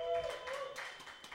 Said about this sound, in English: Hey, give a round of applause if you've ever been to a Dead Room Comedy show.